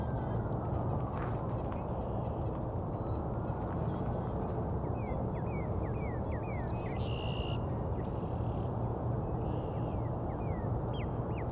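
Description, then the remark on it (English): A finch gives a series of short, high-pitched chirping calls, repeated irregularly over several seconds above a loud, steady low rumbling wash of background noise. “Also some high-pitched calls. Finch call of some kind.”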